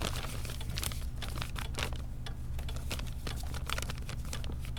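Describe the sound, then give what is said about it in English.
Crumpled paper forms crinkle and rustle as they are handled, a steady stream of sharp crackles over a low background hum, with no one speaking. “They were crumpled up in the back of his drawer.”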